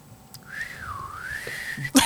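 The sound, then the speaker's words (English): A sassy whistle glides up, dips, and rises again in one sustained, wavering tone, fairly clear over a soft background, ending with a brief burst of noise. “Oh, that whistle is so sassy.”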